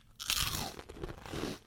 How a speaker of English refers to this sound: Wow, good crunch on that. Very good crunch. Fresh. Well, I don't eat pork crackling often, but this is definitely something else.